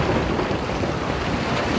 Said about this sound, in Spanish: ¡Hay una aterradora tormenta!